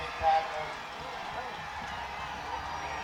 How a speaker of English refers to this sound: You hear that crowd cheering? That's from Oakland fans across the way.